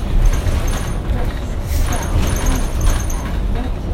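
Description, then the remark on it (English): A steady, loud low rumble of a moving bus interior, with faint high-pitched whines and rattles layered over the constant engine and road noise. “I really want to eat my ramen, but the bus is like...”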